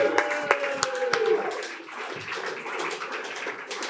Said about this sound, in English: And I think that in and of itself... That deserves a round of applause in and of itself.